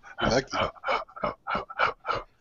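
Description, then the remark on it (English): A person vocally imitates an angry, snarling howl in about seven short, rough bursts, fairly loud, with brief gaps between each cry. “So you hear this howl, kind of. It sounds more like anger than actual hurt.”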